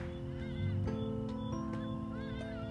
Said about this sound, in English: Do you hear those birds? That's why I was listening quiet. Those birds. I took a picture and then they stopped and you just said, those birds are known as the Hardy Dar.